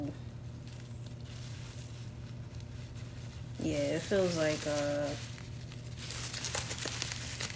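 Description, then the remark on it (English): Papery, multicoloured material crinkles and rustles in short bursts as it is handled, louder toward the end, over a steady low hum, with a brief spoken word in the middle. “It feels like paper.”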